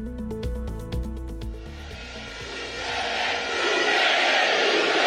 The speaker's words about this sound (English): Crowds cheer in El Salvador as President Nayib Bukele declares himself winner of national elections in a landslide, even though electoral officials have not released any results.